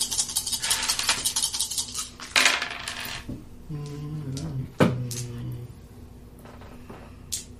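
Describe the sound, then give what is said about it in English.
A handful of dice clatter and rattle together as a player gathers bonus dice during a tabletop role-playing game, in a dense, bright burst of clicks for several seconds, then a few scattered knocks follow, with a faint voice murmuring underneath. “And I'm going to steal a bunch of dice here.”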